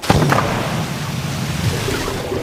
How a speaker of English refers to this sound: So the three of them went all the way over the edge of the waterfall and fell so far. Until they splashed, fortunately, into the deep, deep water down below.